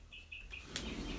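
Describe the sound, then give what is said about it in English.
Birds chirp outside a window, a few short, thin high-pitched calls in quick succession, faint and slightly muffled, followed by a brief sharper chirp against a low background hum. “Didn't think these birds were gonna act up on me.”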